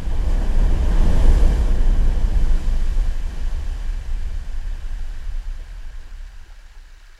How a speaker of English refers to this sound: huge chunks of ice are cracking and impacting the sea surface. And we are not only hearing the impact between the ice and the ocean, but we are also hearing the air bubbles that are trapped under the water due to the push of this iceberg.